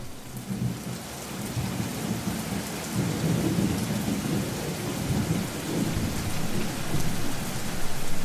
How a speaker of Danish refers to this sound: Hvert år, når det bliver juni i Bangladesh, kommer regnen. I løbet af sommermonsunen, som strækker sig fra juni til september, falder 5.000 mm regn. 5.000 mm. Altså, vi taler om 5 meter regn.